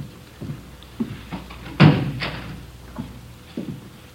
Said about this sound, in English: Would you close the door, Friday? Yeah, sure.